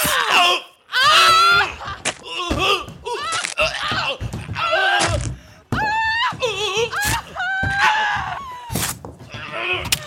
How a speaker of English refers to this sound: That's it! Keep screaming! I can see you in my head now!